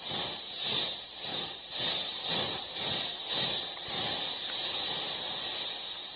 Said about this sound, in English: Then comes a terrible moment. The train stops. First, she goes back.